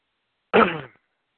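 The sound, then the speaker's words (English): A single loud throat clearing, a short rough rasp lasting about half a second, heard on its own with silence on either side. “you have to excuse me when I have to clear my throat.”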